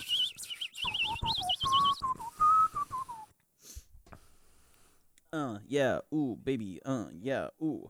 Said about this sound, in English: I can't whistle when I'm yawning.